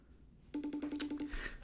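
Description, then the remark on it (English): A low electronic tone pulses in a quick, even series of short beeps for under a second: a FaceTime call ringing as the caller phones Jeffrey Loftus, with no voices over it. “Can you guys hear it ringing?”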